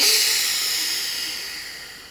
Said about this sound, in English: But it's a deep breath in through the nose, expanding your lungs and ribs outward in both directions as you do. So it's big inhale, powerful exhale, almost like you're blowing your nose in slow motion, and you contract your belly as you do it.